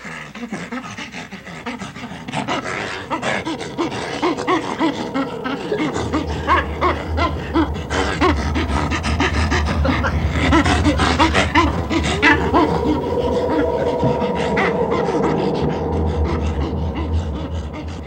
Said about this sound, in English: Now, would you believe, for example, that a chimpanzee such as Mr. Moak, star performer of the chimpanzee show here at the St. Louis Zoo, is ticklish and will laugh out loud?